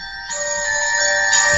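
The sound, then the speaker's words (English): A mobile phone's steady electronic ringtone chimes with bright, sustained tones, growing slightly louder and fuller partway through, with no voices present. “The primary task for me, I'm sorry, my phone's ringing.”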